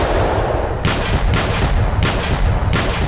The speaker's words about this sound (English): And all of a sudden, like out of nowhere, 5 gunshots.